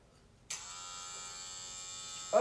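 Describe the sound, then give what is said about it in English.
Electric hair clippers switch on abruptly and buzz steadily with a bright, harmonic-rich whine, rising slightly louder and rougher right at the end. “It's like a little tiny chainsaw.”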